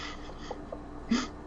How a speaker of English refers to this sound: Ah, the fart came in perfectly.